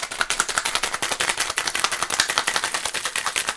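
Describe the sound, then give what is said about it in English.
A cocktail shaker full of ice, raspberry vodka and heavy cream rattles hard in a fast, steady back-and-forth rhythm while a chocolate-covered raspberry martini is made. Bright clattering hits run continuously for several seconds with no voices. “Now, put the lid on it and give it a good shake.”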